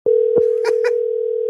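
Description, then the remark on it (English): A steady, mid-pitched telephone dial tone hums continuously, interrupted by a few short clicks and bursts of brighter noise as a call is placed to the Cotillo hotline. “I got to call him twice, as everyone knows the drill.”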